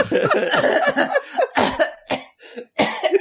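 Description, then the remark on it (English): Someone fakes a harsh coughing fit, as if after taking a drag on a cigarette: a dense run of raspy coughs, then several separate hacking bursts with short gaps between them, loud and alone. “After he stops his coughing fit, he throws it on the ground and like puts it out with his foot.”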